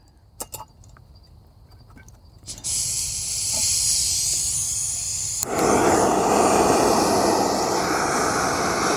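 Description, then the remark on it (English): A few sharp clicks, then a camp stove burner catches and hisses steadily under a pot of water for rice and quinoa, growing noticeably louder and fuller partway through as the flame is turned up. No talking. “Now you want to make sure that your stove is on a very good, flat, solid surface so it doesn't spill out anywhere.”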